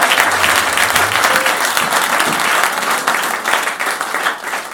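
A crowd applauds a pastor steadily for about five seconds, a dense, loud wash of many hands clapping with no pauses and no voices standing out.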